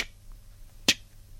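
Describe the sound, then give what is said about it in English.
A single crisp click, made by mouth to imitate a car indicator's tick, snaps out sharply against a quiet low background hum, with no talking. “you know, your indicator normally makes a little tick noise.”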